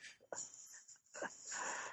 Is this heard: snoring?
yes